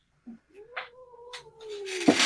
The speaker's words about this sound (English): Now all three cats are here. Yay! They're so angry.